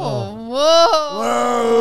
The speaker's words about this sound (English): There's noise coming from the pipes.